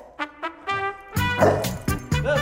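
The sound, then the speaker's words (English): A small dog, Spencer, a 12-year-old dachshund cross mix, barks: two short, high yips, then a louder burst of rapid, overlapping barks and yelps. No one speaks. “He's 12 years old and he is a dachshund cross mix.”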